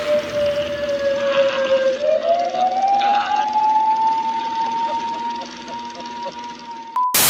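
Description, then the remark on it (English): A police car siren wails steadily as the car drives past an apartment, its pitch gliding slowly upward as it carries on over a low background hum. “Apparently, at one point, a police car drove past my apartment, and everyone in the chat thought someone had called a wellness check on me.”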